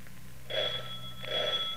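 A doorbell rings with two bright, high-pitched tones, the second following shortly after the first, over a faint low hum with no voices.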